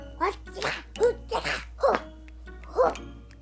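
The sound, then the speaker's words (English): A dog barks about six times in short, uneven bursts, moderately loud, over a steady low background hum. “Oh, I love a dog.”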